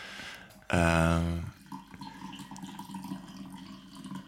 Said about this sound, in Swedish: Det är alltså inte jag som kissar, utan jag får som häller upp kaffe.